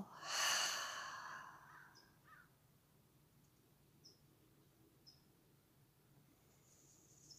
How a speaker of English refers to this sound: Allow for your next breath to be a deep inhale into the body. Open the mouth, exhale, let go.